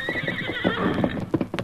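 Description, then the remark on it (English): A paint horse, having left its master when called, lets out a shrill, wavering whinny while its hooves clip-clop in uneven steps beneath it, with sharper hoof knocks at the end. No one speaks. “Good horse. You left your master when I called you.”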